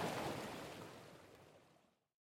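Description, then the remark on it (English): Ocean waves wash into a shallow rockpool, a full rush of surf that steadily recedes and fades to silence over about two seconds, with no voices. “Ocean Waves at a Shallow Rockpool”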